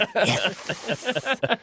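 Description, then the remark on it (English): A voice imitates a snake with a drawn-out, breathy hiss, broken into several short pulses and sputters before a final quick burst, fairly loud. “Didn't he turn into a snake while he said that?”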